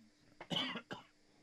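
A single sharp cough with two quick bursts, the second shorter, sounding slightly muffled, coughed off the microphone.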